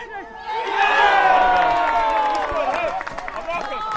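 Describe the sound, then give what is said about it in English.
A large football crowd, including many Dulwich Hamlet fans, erupts in a loud, sustained roar of cheering and shouting after a goal that makes it 4-0 just after half-time. The roar swells quickly and holds steady for several seconds before slightly thinning. “It's quite a lot of Dulwich Hamlet fans.”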